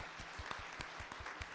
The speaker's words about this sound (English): Well, pray. Let's clap for that. That's fantastic.